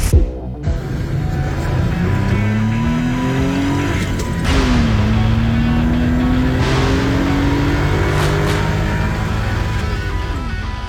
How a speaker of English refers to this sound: Those car sounds, courtesy of Patrick and his Suzuki Carry.